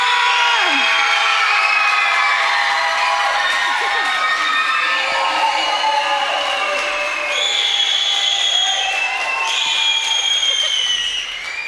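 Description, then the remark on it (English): A loud crowd at a church service cheers and screams continuously in welcome for a pastor, with high-pitched whoops and shrieks rising above a dense wall of voices and clapping, sustained for several seconds without letting up. “I think I know where the one scream came from.”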